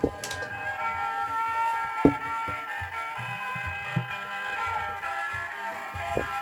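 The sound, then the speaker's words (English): A hand-cranked box that looks like a jack-in-the-box gives off a steady, scratchy mechanical screech with high whining overtones, fairly quiet, broken by a few sharp clicks and knocks as it turns. No one speaks. “It looks like a jack-in-the-box if you close the top, but it's actually like a cranker. Okay, here we go. Debut. Now listen to that screech.”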